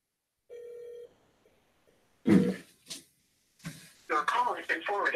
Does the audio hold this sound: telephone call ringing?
yes